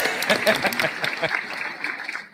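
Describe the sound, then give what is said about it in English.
A short crowd cheering and clapping sound effect, played after a game winner is announced: a dense wash of applause with excited voices whooping over it at the start, holding fairly loud and then tapering off after about two seconds. “And the crowd goes wild.”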